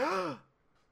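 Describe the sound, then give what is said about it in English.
A single person imitates a crowd's gasp with one short, breathy, rising-and-falling vocal 'oh', then fades into quiet. “Sorry, that was my audience gasp.”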